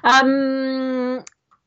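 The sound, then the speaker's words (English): A single drawn-out, steady creaking whine lasting about a second, fairly loud, apparently a voice imitating a squeaky door, ending in a short click. “Squeaky door.”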